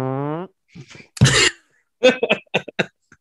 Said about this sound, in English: I'll just get a Barney from The Simpsons soundbite. It's a burp.